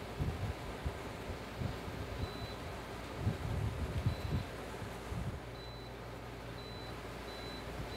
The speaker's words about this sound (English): And I am going to just lower the fan speed of my AC so it doesn't blow quite so hard and shake the camera. Let's see. 1 second.